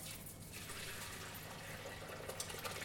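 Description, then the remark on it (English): Curds and whey are poured steadily back into butter muslin to drain, a continuous splashing trickle with faint wet drips and no talking. “So now you're pouring it back into the muslin, the butter muslin.”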